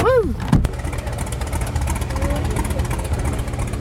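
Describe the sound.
A steady, loud engine drone, like a seaplane motor, rumbles throughout with a broad hiss at the Oshkosh Seaplane Base, where the plane is ready to be towed up to dock number one. A brief rising-falling voice whoops at the start, followed by a sharp knock.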